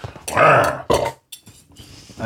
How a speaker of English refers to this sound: Whoa, there was food in that burp. You ever burp and the food goes up your nose?